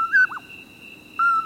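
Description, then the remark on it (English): A common poorwill gives its mellow, whistled two-note call, a slurred rising note and a short dropping one, then starts again after a pause, over a faint steady insect-like drone. “When it's summer in the Southwest, the call of a common poor will greets the moonrise.”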